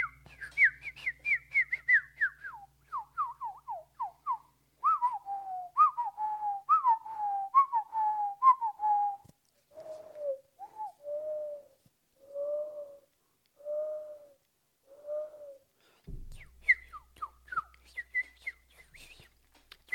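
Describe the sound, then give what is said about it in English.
A person whistles a run of bird-like calls, starting with quick descending chirps, then repeated warbling phrases and slower single notes, clear with short pauses and no talking. “Go outside, listen to this, and we're going to give you some soothing sounds to listen to while you're walking. For example, birds.”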